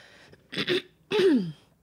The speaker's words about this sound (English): I thought I had a transition and then I lost it. Was the transition you clearing your throat because you're ill? I'm not ill. I promise. I'm not ill.